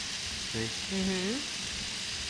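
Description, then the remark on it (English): Cheese sauce simmers in a pan with a steady sizzling hiss throughout, while a voice briefly murmurs over it. “I'm just simmering it here, so it'll be ready to go.”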